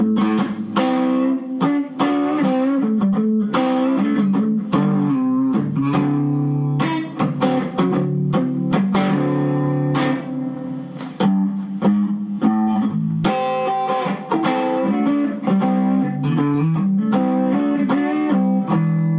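A guitar plays dense, ringing chords and notes drenched in heavy reverb, each tone smearing into a lush, sustained wash. Loud and continuous for the whole stretch, with no one talking.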